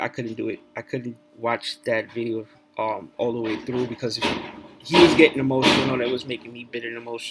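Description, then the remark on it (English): A man talks steadily while loud metallic bangs and clatter from work on dumpsters right next to his building break in behind him, with a burst of heavy thuds toward the end. “They're doing, you know, like I told you guys, there's dumpsters right next to my building. And that's what they're working on right now.”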